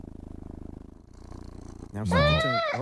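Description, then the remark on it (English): A played recording of a cat: it purrs steadily in low, rhythmic pulses for about two seconds, then lets out a single loud, drawn-out meow that rises and falls in pitch. “No, let's go back to purring. I don't want the meow.”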